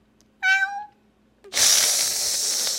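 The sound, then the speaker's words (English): A person imitates a cat with one short, falling meow, fairly loud, followed after a brief pause by a long, harsh, breathy hiss-like noise. “I need a meow of the week. Yeah. I'll demonstrate for you. Meow. Meow.”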